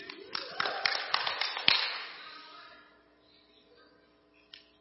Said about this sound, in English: That's my son, so I guess he has to clap.